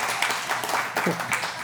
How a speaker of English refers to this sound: Celebrate it and share it with you all. You're supposed to clap. good job.